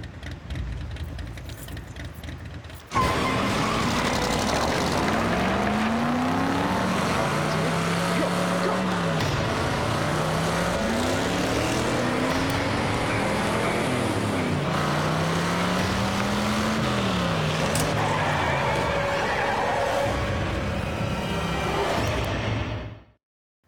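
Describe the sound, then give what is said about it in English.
A car engine roars, revving and climbing in pitch through several gear shifts for about twenty seconds. It kicks in abruptly after a quiet start and cuts off sharply at the end. “Who's driving your car?”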